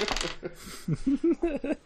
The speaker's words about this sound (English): So, we're gonna use real dice? I think we're going to use real dice. Okay. Can you guys hear that? Yeah, we hear it great.